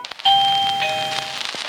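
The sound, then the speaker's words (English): A doorbell chimes once with a bright, sudden electronic tone that rings steadily and slowly fades over about a second and a half, with no one talking. “Oh, crap. Someone's at my door.”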